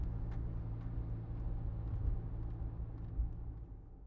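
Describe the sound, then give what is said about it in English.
A steady, low car engine rumble drones throughout as a taxi cab drives slowly and parks across the street, with a faint thump near the end and no voices. “Well, all I have to do is just ride by in a cab and pump a bullet into her.”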